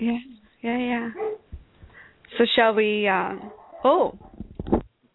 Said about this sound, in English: Apparently the dogs are excited and trying to help us with the announcements and stuff.